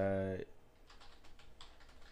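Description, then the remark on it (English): A brief voiced sound cuts off, then soft, quick clicks of typing on a computer keyboard follow, a steady patter of keystrokes as someone searches on Google. “Anytime you hear keys going, that's”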